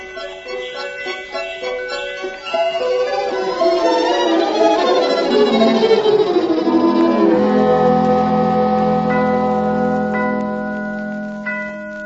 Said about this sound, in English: Alice, what are those bells?